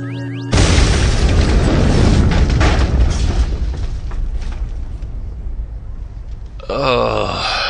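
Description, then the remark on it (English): A big explosion bursts in suddenly and loud, then rolls on as a long, rumbling roar that slowly fades, ending with a burst of shrill whistling, warbling sounds. “Commencing big ass explosion.”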